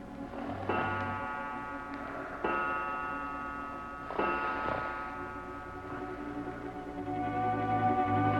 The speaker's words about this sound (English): All was quiet save for the ticking of the clock that stood in the corner. The seconds passed, and it chimed the hours softly.